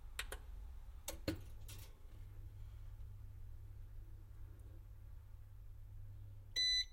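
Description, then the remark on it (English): A few sharp clicks as an appliance's stop button is pressed, then a steady low appliance hum runs for several seconds before a single short, bright electronic beep sounds at the very end. “Now I will press the stop button. Eventually it will come up. It's by itself. And then it will go beep.”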